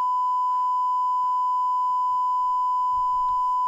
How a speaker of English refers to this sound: That part had to be bleeped out. Which part? Well, the part you were just saying, we didn't hear what you said